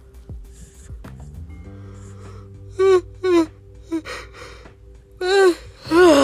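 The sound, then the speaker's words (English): A loud, strained yawn comes in several gasping, wavering bursts, rising and falling in pitch over a quiet, steady background hum. “Sorry, I have kind of violent yawns.”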